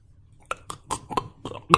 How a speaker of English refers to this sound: Mm, burp. Oh, excuse me.